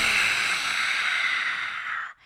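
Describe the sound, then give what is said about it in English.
In a yoga breathing exercise, after an inhale through the nose, a long, steady hissing exhale through an outstretched tongue, a breathy rush of air that holds for about two seconds before cutting off abruptly. “And when you do this, it makes like a hissing sound.”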